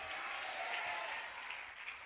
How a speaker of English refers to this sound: As you clap your hands, I declare, you shall not fail. Come on, clap and shout, I will not fail. Lift a voice and shout, I will not fail.